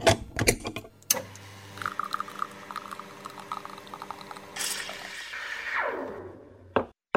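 An espresso machine brews: a few clicks, then a steady buzzing pump hum with rapid pulsing, a rush of hissing steam that fades away, and a final clunk.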